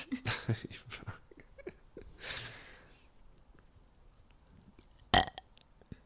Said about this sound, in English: Go on, give us a last gem. Keep trying to fart.